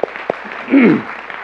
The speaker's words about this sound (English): Give our teachers a round of applause.